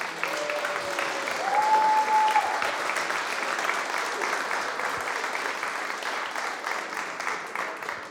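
An audience applauds steadily for about eight seconds, a dense wash of many hands clapping at even loudness, with a brief whistle-like tone sounding over it early on.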